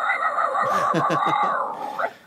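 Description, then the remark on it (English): A voice imitates a bark with a gritty, raspy vocal fry scream: a loud, strained run of rapid rough pulses, over two seconds, then trailing off, with no other talking. “So I'll actually, like, bark at them in my fry scream.”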